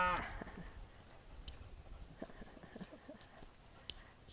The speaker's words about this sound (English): It was like they have cows and then the calves. And then they were just standing there, like one of them was looking at me, you know, and then just kind of like giving me a little dirty look. You can hear them.